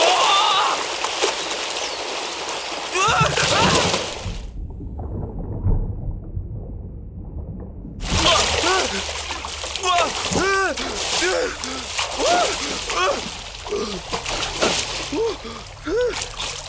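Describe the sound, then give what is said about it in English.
A loud splash as a body falls down a jungle gully and plunges into a dark pool of water, then a few seconds of muffled, underwater-sounding rumble before it resurfaces into sloshing water with vocal sounds layered over it. “Trying not to think about what else might be in the dark pool of water that had broken his fall, Danny swam for shore.”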